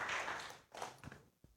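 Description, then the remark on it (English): A church audience claps for Jesus during a sermon, together in a dense wash of applause that quickly fades, leaving a few scattered, softer claps trailing off at the end. “When I expose you to his grace, yeah, let's give him a clap.”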